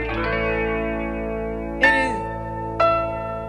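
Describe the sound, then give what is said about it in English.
A doorbell ding-dong played on piano and recorded by a radio host for the Mix 100.7 morning show: two bright struck notes about a second apart ring out over a lingering sustained chord, with a shimmering, effects-laden tone and no voices. “We want to let you get that little ding dong in there. Yes, that was doorbell.”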